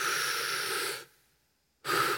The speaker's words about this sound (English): And so to just sort of bring it home, why don't just everybody take a big deep breath, just. And then exhale, do one more time. Exhale, one more time.